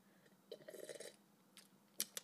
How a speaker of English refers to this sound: Okay, I had to let that out, and let me get a little sip of this cab.